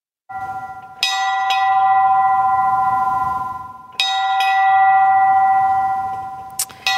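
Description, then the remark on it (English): A large bell rings out loudly at a ceremony at the Peace Arch border crossing between Canada and the United States, marking the 100th anniversary of the First World War armistice, struck about three times at slow, steady intervals, each stroke leaving a long, shimmering ring. “And with that ringing of the bell, Canadians and Americans on both sides of the border at the Peace Arch border crossing, marking the 100th anniversary of the armistice that ended the First World War.”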